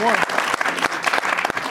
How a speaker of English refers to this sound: Well, yeah, that deserves some claps, huh?